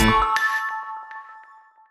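A short electronic phone ringtone chimes, bright sustained tones with a couple of sharp accents, ringing clearly and then slowly fading out over about two seconds, with no talking.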